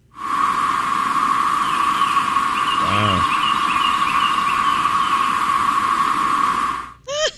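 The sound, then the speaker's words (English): A dense chorus of cicadas in Georgia drones loudly and steadily, a continuous high-pitched whine over harsh buzzing that sounds much like a siren, with a brief chirp near the end. “a lot of people are calling 911 because they think they're hearing sirens at home”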